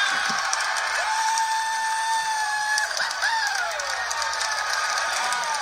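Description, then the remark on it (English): A huge Clemson football stadium crowd roars and cheers without letup as Clemson scores a touchdown in a game against Alabama, a dense wall of noise with a few long, sliding shouts or whistle-like tones rising and falling above it. “And you can hear the Clemson crowd going nuts,”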